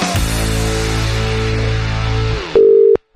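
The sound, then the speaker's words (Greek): A steady telephone dial tone hums loudly and continuously for a couple of seconds as a call is redialed, then cuts to a higher, thinner beep followed by a short silence and another brief beep. “Για ξαναπάρ' την Ιωάννα, είναι πάρα πολύ σημαντικό αυτό το τηλεφώνημα.”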